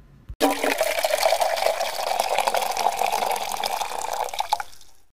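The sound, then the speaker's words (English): A cocktail is poured steadily into a glass, a continuous splashing trickle lasting about four seconds after a brief click, then tapering off into silence. “We will be right back after this cocktail pour.”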